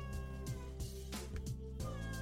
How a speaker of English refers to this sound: And another big shout out to my cat, which decided to interrupt my recording of the intro and outro today.